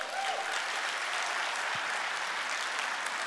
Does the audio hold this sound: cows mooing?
no